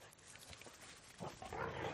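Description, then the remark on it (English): A dog barks and yelps in a quick, fairly loud burst, following a stretch of low background noise. “Hell, the hell. Dogs.”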